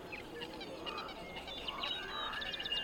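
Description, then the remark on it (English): Birdsong passed through a steep filter around 2.5 kilohertz: thin, tinny chirps and short whistles repeat quickly and unevenly over a faint hiss, with no voices, sounding muffled. “There's only one sound that makes it through the filter. Birdsong.”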